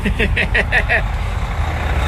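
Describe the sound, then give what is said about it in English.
A heavy truck, the first to arrive, idles and rumbles with air brakes, with six quick, evenly spaced reversing beeps sounding over the low engine drone during the first second before the rumble carries on alone. “All right, here comes the first truck.”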